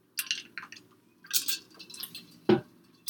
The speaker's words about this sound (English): Speaking of which, excuse me while I take a sip of water.